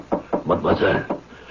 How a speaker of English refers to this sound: Nikolai paces the floor of the dining room and then, unable to bear the knowledge that the young governess, Mashenka, is in her room in such distress, he mounts the stairs and knocks on her door.